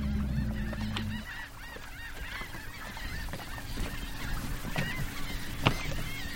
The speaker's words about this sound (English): Our destination is Green Island. It's a rookery jam-packed with shorebirds.